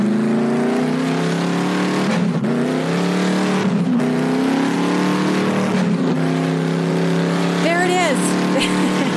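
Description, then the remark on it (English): A race car engine roars loudly at Bandamere Speedway, climbing in pitch and shifting up through several gears in a continuous, powerful run. “You guys, we had our amazing Accelerate event at Bandamere Speedway.”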